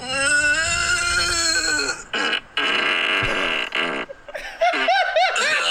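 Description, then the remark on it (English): A long, loud, buzzing fart rings out, followed by a series of strained, wavering groans and moans of pain. “Great fart.”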